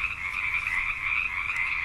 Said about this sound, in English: The frogs were very loud.